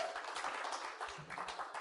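A crowd claps steadily throughout, a dense wash of many hands heard at a moderate distance and fairly soft, with no pauses in the applause.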